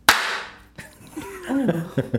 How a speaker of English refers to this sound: Oh, God, he did a Yankees clap.